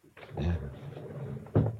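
A door is handled, with a heavy opening bump, a muffled rumbling stretch, then a second firmer knock as it shuts, all fairly loud with no clear talk.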